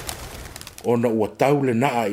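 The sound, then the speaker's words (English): Two loud pigeon coos, each a sustained warbling call, follow a brief soft rustle as pigeons land on a tree. There is a short gap between the coos. “You prepare your response when you hear the pigeons landing on the tree.”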